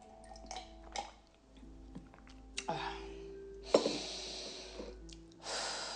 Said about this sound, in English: Let me just take a sip of my coffee and wash this naan down.